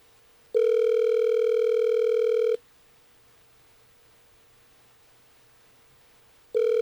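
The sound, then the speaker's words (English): An outgoing phone call from The Miguel Show on Hot 101.5 ringing in the earpiece: a steady electronic ring tone lasting about two seconds, a long silent pause, then the next ring beginning. Clear, with no talking. “Hope she picks up.”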